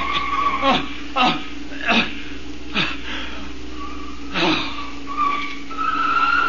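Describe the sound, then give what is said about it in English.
Car tires squeal loudly in several sharp bursts, ending in a longer high-pitched screech as the vehicle skids to a stop, prominent. “Stop this car. Let me out.”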